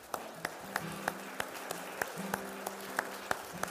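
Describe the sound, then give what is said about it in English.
A church audience claps for people who raised their hands to come to Jesus, in a steady, even rhythm, about a dozen sharp claps standing out over a soft wash of crowd noise and low sustained musical tones. “Come on, let's clap for them, church.”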